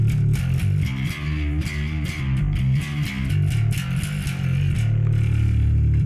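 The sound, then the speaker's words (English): An electric bass played through a distorted amp growls out a run of low, gritty notes, loud, ending on a held tone, with no voices. “You can get some distortion out of this one.”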